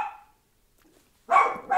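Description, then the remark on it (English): A dog, Gracie, barks in short, loud bursts: one bark fading out at the start, a pause of near silence, then two more quick barks close together. No one speaks. “Gracie's upset they took the monkeys away, too.”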